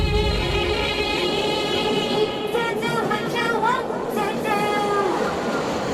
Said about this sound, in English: Hold on, this train going by.